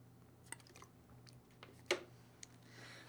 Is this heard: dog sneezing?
no